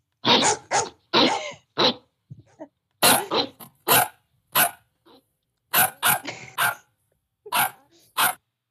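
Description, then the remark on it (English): A dog barks loudly, letting out a rapid string of sharp barks in uneven bursts with brief pauses between them, and no talking over it. “I'm gonna keep barking.”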